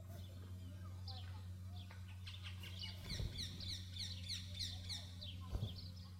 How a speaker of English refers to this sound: Did you hear that? In the trees right here on this mountain, there are birds chirping. And they're preaching a sermon that is 1,000 times better than mine. Do you know why they're chirping? Because they're alive.